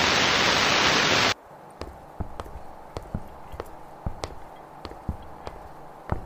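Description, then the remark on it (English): A loud rush of wind-like noise cuts off abruptly, then a steady series of crisp footsteps moves at an even pace through ruins over a low, faint background of wind. “I've heard the footsteps, and I've seen them moving through the ruins to our left.”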